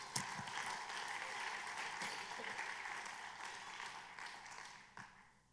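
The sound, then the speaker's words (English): A crowd claps together in sustained applause as praise to the Lord, a dense wash of many hands that holds steady for several seconds before thinning out near the end. “Give the Lord a hand clap of praise.”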